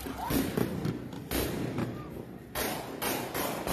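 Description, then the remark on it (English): At a protest by an ICE line, several sharp, loud bangs of flashbang-type grenades shot into the air and then gunshots burst out at irregular intervals, each leaving a brief roaring tail over a constant wash of crowd noise. “They're going to start shooting off kind of what looks like kind of flashbang type grenades or something into the air, and then you're going to hear the gunshots afterwards.”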